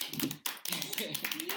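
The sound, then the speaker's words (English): A short burst of hands clapping, quick and irregular like a small group applauding, with voices chattering and whooping over the claps. “We're a quarter of the way to 100 episodes, so we're going to give ourselves a round of applause.”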